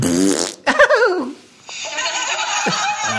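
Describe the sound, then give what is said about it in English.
A loud, buzzy fart sound effect rips out in short wavering bursts, surrounded by giggling and laughter, with a brief quiet gap before more tittering follows. “No, because they like the farting, don't they, the old ladies?”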